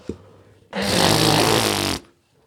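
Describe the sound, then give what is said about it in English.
A single loud, honking nose blow from someone with hay fever, lasting just over a second, a forceful breathy blast with a buzzing low tone running through it, ending abruptly with no talking. “I was just blowing my nose.”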